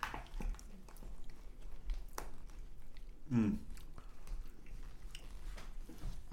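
Chewing right up against the microphone: irregular wet smacks and small crunchy clicks over a low hum, with one louder, squishy burst partway through.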